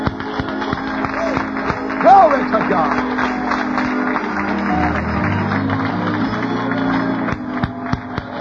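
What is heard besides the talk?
audience clapping hands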